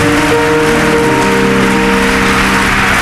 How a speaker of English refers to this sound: Come on, if you are clapping, clap well.